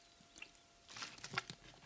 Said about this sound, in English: Hold on. Let me get this spring water right here. I'm getting too excited right now. Hold on. OG water break.